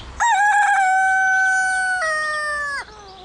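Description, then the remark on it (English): A single rooster crows loudly, starting with a few stuttering notes, then a long sustained call that steps up in pitch before breaking off sharply. No one speaks. “Roosters die.”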